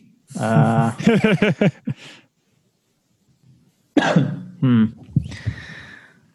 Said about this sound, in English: He's coughing again.